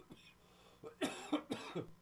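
A harsh fit of coughing from someone still under the weather: a quick run of four or five raspy coughs in about a second, fairly loud, with no talking around them.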